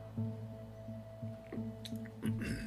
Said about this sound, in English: Sorry, I needed to take another sip of my coffee there.